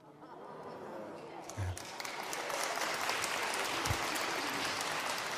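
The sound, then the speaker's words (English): Audience applause rises quickly and swells into sustained, dense clapping from many hands, holding steady at a fairly loud level throughout with a broad, crackling texture. “Applaud for me, but those poor other guys before me, right?”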